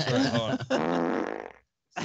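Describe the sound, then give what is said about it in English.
A loud fart sound effect, played by pressing a button on a soundboard loaded with 4,000 unique farts, rasps for over a second, its long wet flutter trailing off into a brief silence before another sound starts. “How many unique farts are programmed into there?”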